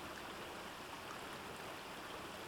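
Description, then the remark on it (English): A babbling stream flows steadily along a shallow riverbed, its water making a continuous bright, hissing rush with no pauses, moderately loud, with no voices. “The sound of a babbling stream became audible.”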